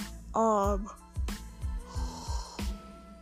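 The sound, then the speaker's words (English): A voiced yawn with a drawn-out, wavering tone near the start, followed by soft breathy sounds and several low muffled thumps. “I'm sorry I keep yawning.”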